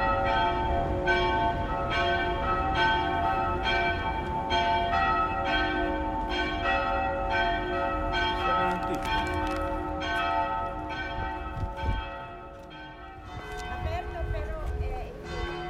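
Church bells in Piazza Collegio Romano, Rome, ring out at noon in a steady, repeated peal, loud and resonant with long overlapping tones, over a busy open-air hum of traffic, street noise and voices.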